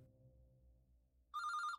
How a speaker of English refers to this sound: She tried ringing Anjali, but she was not answering her phone.